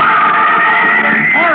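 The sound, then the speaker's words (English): A woman screams in terror while beating against the walls, one loud, sustained, high-pitched cry that holds steady for over a second and wavers upward near the end. “In an agony of terror, I beat against the walls, and I screamed with every breath of life in me.”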